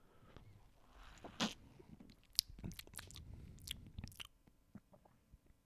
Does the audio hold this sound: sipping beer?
yes